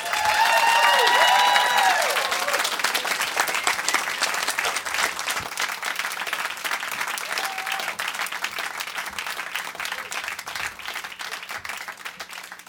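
audience applause and cheering

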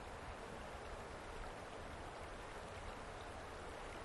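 flowing river water

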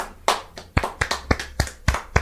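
people clapping

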